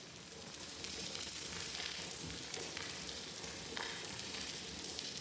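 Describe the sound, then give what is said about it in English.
An underwater soundscape of a degraded coral reef: a steady, even crackling hiss like frying, with a few sharper clicks and no calls or voices standing out. “If you were to go to most coral reefs today, you'd hear something like this.”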